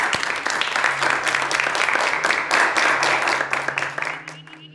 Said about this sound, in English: Please join me in a round of applause.